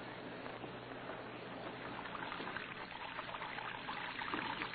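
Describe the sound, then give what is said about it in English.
Water pours steadily from a wash basin onto a prison cell floor in a continuous splashing trickle, a constant stream spattering onto the hard floor with no voices. “Red Beaver lay sprawled in his bunk, watching water pouring from his wash basin to the cell floor.”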